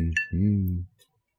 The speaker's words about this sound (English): Cheers. A little cheers. A little cling cling.